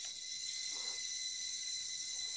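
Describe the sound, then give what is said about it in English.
Someone uses an outdoor tap: a steady, hissing rush of water pours continuously, bright and airy, with a slight dip in the flow near the start. No one speaks. “No, someone's using the outdoor tap.”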